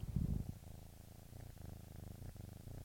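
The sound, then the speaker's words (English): A male cat purrs in a low, steady rumble with a rhythmic pulsing texture, starting with a louder burst and continuing softly and evenly throughout. “Oh, he's purring. Can you hear that?”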